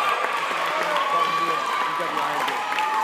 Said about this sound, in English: Let's have a round of applause for her. Thank you so much.